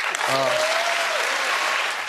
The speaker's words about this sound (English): And then, woo, that wasn't just a polite round of applause. That was whooping it up because they don't like us.